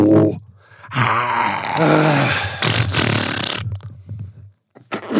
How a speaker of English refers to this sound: No, yeah, the fart came through. God. Nothing else came through. It's when I curse and fart, it goes through.